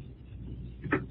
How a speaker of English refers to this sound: Oh, I hear you close and lock the door.